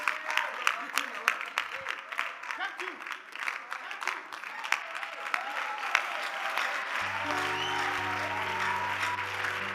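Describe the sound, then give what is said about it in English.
An audience claps in a dense, rapid patter that holds steady throughout, with a sustained low musical tone joining under the clapping in the last few seconds. “All the suspects are not clapping.”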